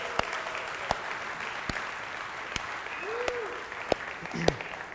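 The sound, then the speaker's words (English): A church audience claps steadily with scattered sharp hand claps standing out, a dense even patter of applause filling the whole stretch at moderate loudness, with a faint voice briefly audible underneath. “You can clap for that.”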